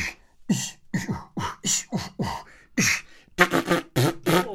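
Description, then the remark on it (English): A voice makes a rapid run of beatboxing noises: punchy, pitch-dropping kick-like pops in a steady rhythm, then a burst of buzzier, hissy snare-like sounds, moderately loud with no words spoken. “And this, do you want to hear my beatboxing noises?”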